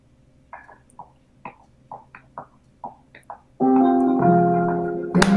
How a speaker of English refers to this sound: The verse has some short phrases and then some triplet phrases going back and forth. And then the verse has all these swing phrases. I'll play it for you and I'll clap along and you'll hear.